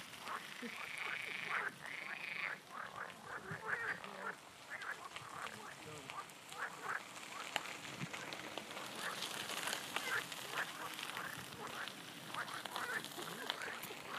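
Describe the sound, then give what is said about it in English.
A dense chorus of frogs croaking continuously in a natural spring in Tuscany, many overlapping calls in a rapid, pulsing rhythm, fairly loud, with no talking. “Now, this is a recording for no other reason than I want you to hear the sounds of the frogs of Tuscany, the happy, happy frogs in a natural spring.”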